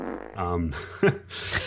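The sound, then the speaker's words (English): A short, buzzy fart sound effect, loud, with a low rumbling tone followed by a quick sharp pop and a brief hissy sputter. “Hold on, I need like a fart sound effect or something real quick.”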